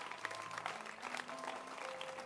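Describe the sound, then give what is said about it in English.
An audience applauds in a steady, dense patter of many hands clapping at once, holding an even, moderate loudness for a couple of seconds with no voices rising above it. “Oh, by the way, before you clap, already the world is moving away from this e-books anyway.”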